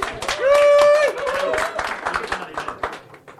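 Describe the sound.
A small audience claps for a few seconds, with quick, irregular claps fading toward the end, while a voice lets out a drawn-out cheer over the applause near the start.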